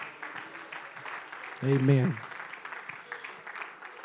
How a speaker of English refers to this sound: Would you clap unto the Lord one more time?